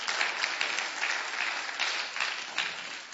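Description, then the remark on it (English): A crowd of people applauding God, a dense, steady patter of many hands clapping at once with small swells in intensity, sustained for a few seconds without any voices. “Yeah, I think he does deserve a clap for that.”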